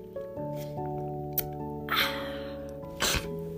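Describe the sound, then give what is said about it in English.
Someone sips water: a few short, wet slurping and gulping bursts spread over a few seconds, heard over a steady, sustained musical drone. “I'm gonna get a sip of water now.”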